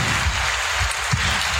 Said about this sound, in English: Round of applause.